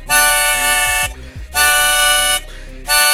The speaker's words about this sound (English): I just bought a new truck. Yeah, I've been using the horn all over the place. You lay on the horn. You're that guy. I do a little quick tap, tap, beep, beep. Like that. That's my beep.